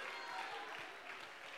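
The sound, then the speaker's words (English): An audience claps their hands together, a dense, steady wash of many overlapping claps with no distinct individual beats, holding at an even level throughout, with faint voices mixed in. “Can somebody clap your hands and can somebody shout hallelujah unto God?”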